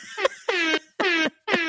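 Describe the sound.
A voice imitates a hip-hop air horn with four loud, brassy blasts in a quick stuttering rhythm, each a bright harmonic-rich tone with a slight downward bend, alone with no talk.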